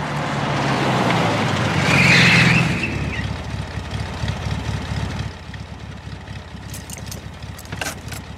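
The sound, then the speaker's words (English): A car engine revs up loudly with a brief tire screech around two seconds as a man takes the car, then settles into a steady idling rumble, with a few faint clicks near the end. “Uh-oh, he's taking the car.”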